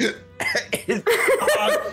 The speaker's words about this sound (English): Those hiccups are pretty nasty.